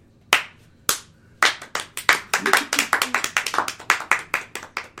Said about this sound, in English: Clap again, that was horrible.